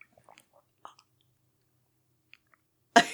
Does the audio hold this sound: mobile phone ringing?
no